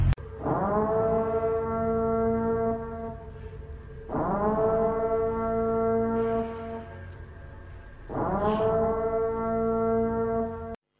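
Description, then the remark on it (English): An emergency broadcast system siren, signalling the start of the annual purge when all crime is legal for 12 hours, blares three times, each a long, steady, horn-like wail of several seconds that swells up at the start, separated by short pauses. No voices. “Commencing at the siren, any and all crime, including murder, will be legal for 12 continuous hours.”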